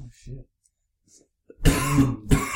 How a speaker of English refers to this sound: Sorry if the coughs are a little loud tonight, but we are for the first time finally catching up to the systems of the world, and we got some headset mics, which is really, really weird so far.